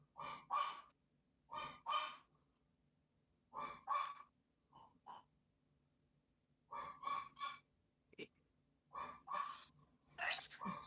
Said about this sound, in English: I wish we didn't have a dog that barked so much.